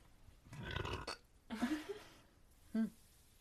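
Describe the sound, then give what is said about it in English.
A loud burp rumbles out in rough bursts, followed by a brief voiced grunt and a short tonal sound, with no clear speech. “I was talking about the story, not the burp.”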